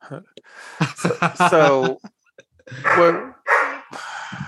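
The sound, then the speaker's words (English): A big dog barks in a string of loud, rough bursts, some drawn out into a howling note, with a short pause before a few more barks follow. “A big dog too.”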